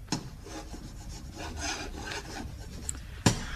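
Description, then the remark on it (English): Chalk scratching across a blackboard in a run of quick, rasping strokes, with a sharp tap at the start and another near the end, as Captain Mannering puts the final touches to a diagram in the novelty rock emporium on the sea front at Warmington-on-Sea. No one speaks. “This evening, he is busy putting the final touches to a diagram on the blackboard.”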